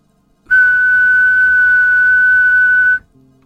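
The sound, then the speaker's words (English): A single long whistled E note, like the E on a piano, held steady like a whole note for about two and a half seconds, loud and closer than an earlier whistle, then cut off cleanly, leaving only a faint low hum behind. “Then there was a long pause, and then another whistle, but closer this time, another long E whole note.”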